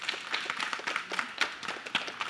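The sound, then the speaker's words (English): A crowd claps together in a dense, steady burst of applause, many overlapping hand claps forming a continuous crackling texture with a few sharper individual claps standing out. “Let's give everybody else a round of applause.”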